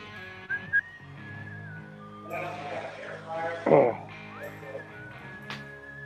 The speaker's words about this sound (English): I can't whistle for shit.